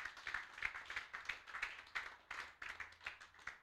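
An audience claps together in a steady, even rhythm, the sharp crisp claps repeating about three times a second with no one speaking.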